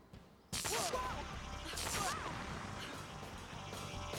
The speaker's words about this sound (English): Those power brats have found the ship! Fire! Fiery forward cannon!